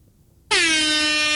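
A loud air horn blasts suddenly after a brief near-silence and holds steady, a bright brassy tone sustained without any voices.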